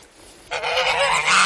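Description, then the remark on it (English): Geese honk loudly in a dense, overlapping chorus, recorded on a phone, that starts abruptly and continues without pause, the harsh calls layered over each other. “Oh, look at the lovely geese.”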